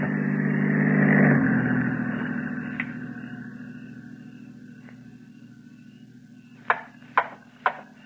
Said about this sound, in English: The car approaching has a spotlight. It is a patrol car. Quickly.